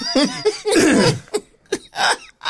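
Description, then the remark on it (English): A person with congestion clears their throat several times: a long, raspy, gravelly rumble followed by a few short, sharp hacks spaced out unevenly, loud with no talking. “Clear your throat when you're speaking. My throat's cleared.”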